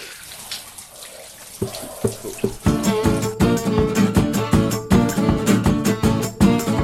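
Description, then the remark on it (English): A steady hiss of running shower water fills the opening moments, then rhythmic music with punchy beats starts up and plays loudly over the continuing spray. “Over, go off and shower.”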